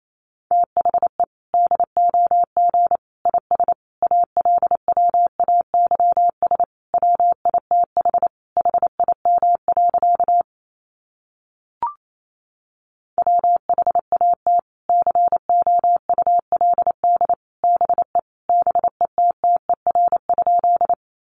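Rapid Morse code at 28 words per minute: a single steady mid-pitched tone keyed in quick dots and dashes, two long runs broken by a brief silent gap with a faint click.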